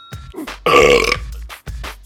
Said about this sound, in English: Have you heard of a booty burp? Ooh, I've heard of a bottom belt. Booty burp?